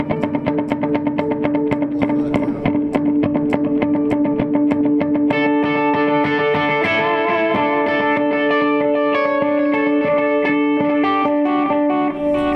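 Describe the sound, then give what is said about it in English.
An electric guitar plays a steady stream of bright, repeating notes through a dotted-eighth delay, each echoed rhythmically to create a cascading, shimmering pattern; midway a sustained, layered wash of tone swells in underneath. “So that's the dotted eight thing, and I can, you know, take that different tempo.”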